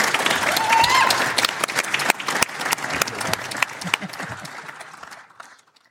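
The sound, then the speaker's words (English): An audience breaks into applause for a panel of speakers, dense overlapping claps with a few sharp louder ones, sustained for several seconds before thinning out and fading to silence. “Before we offer a vote of thanks in a second, can I just have a quick round of applause for our panellists, please?”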